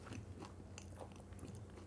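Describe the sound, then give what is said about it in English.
Loud chewing of a falafel wrap holding about four falafels, with wet, crunchy mouth sounds repeating in an uneven rhythm right at the microphone and no talking. “I have not missed watching you chew like horse a horse-like chewing into the microphone.”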